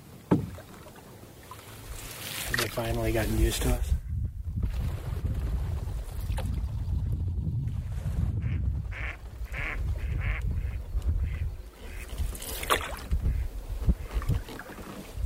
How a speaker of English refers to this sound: We keep paddling up Northeast Creek, flushing a group of mallards in front of us.